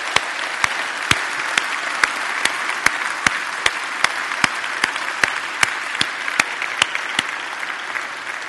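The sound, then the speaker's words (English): A church audience applauding together during a service, a steady wash of many hands clapping with a few sharp, louder claps standing out at a regular beat, sustained for several seconds with no talking. “How about a clap to the Lord for the good thing God is doing?”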